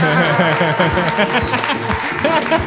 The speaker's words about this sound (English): You guys held your applause for last names, and I'm like, no.